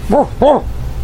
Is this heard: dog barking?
yes